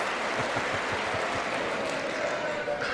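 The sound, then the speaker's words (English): Loud, sustained applause in a legislative chamber as Democratic women dressed in white stand and applaud during a speech by President Trump. A dense, steady wash of clapping fills all three seconds, with a few low rhythmic thumps early on and crowd voices blending in. “And the Democrats, because they don't want to applaud President Trump, a lot of them are turning their backs on President Trump and applauding these women in white.”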